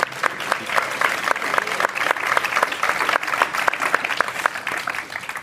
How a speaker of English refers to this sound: Ladies and gentlemen, please give him a round of applause.